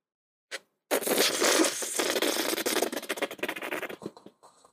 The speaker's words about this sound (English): Yes, very strong tomato smell. By the way, this poured liquid. This did not pour jelly. That's what really has me baffled, because mine, too, when I poured it, was much more liquid. I think we slurp it up.